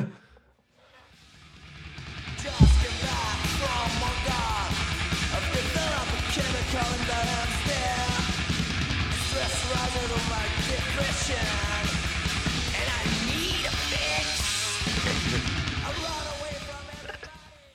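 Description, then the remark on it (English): A thrash metal album track, found on the cassette and CD versions but not the vinyl, blasts in after a brief quiet lead-in, with dense distorted guitars, pounding drums and shouted vocals driving on at a steady, loud level before cutting off near the end. “And then the next track is something that is, this is one of the tracks that is not on the vinyl, but it is on the cassette and CD version.”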